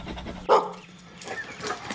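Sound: dog panting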